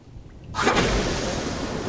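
A lightning strike in another chamber deeper in a cave, echoing through the cave system: after a brief hush, a sudden loud crack bursts in and rolls into a sustained, noisy rumble that carries on without fading.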